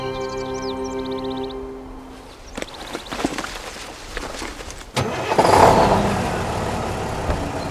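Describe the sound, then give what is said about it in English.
A bus engine cranks and turns over after a brief melodic chime, then settles into a loud, steady rumbling idle with no one speaking. “I'll help you tidy up and we'll get ourselves back on the bus.”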